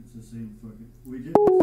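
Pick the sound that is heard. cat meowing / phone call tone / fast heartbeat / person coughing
phone call tone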